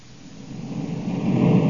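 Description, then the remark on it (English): Corey's spaceship engine roars as it comes in to land by a shack: a dense, hissing low rumble that swells steadily louder, with no voices over it. “Corey's landing right where I figured he would.”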